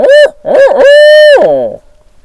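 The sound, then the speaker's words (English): A person loudly imitates an owl hooting: two short hoots followed by a long, steady, drawn-out hoot that slides down and fades, with no other talking. “I mean, I can owl hoot. Let's close with an owl hoot.”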